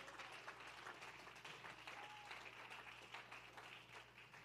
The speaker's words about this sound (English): Can we give the Lord a hand clap of praise tonight?